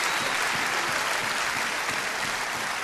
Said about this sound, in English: I think we owe God a clap offering.